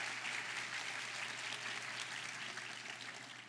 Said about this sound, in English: A Jesús. Give the Lord a round of applause.